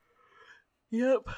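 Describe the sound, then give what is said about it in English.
A drawn-out yawn: a soft breathy inhale gives way to a loud voiced groan that slides downward in pitch, ending in a brief exhaled sigh. “Sorry, I yawned.”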